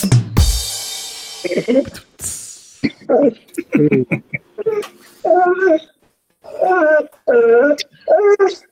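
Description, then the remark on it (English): A puppy whimpers and yips in a string of short, high, whiny bursts, fairly loud, with a sharp thump near the start. “Good puppy. Yep. He's loving the jokes.”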